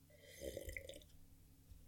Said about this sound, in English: Overemphasized sip.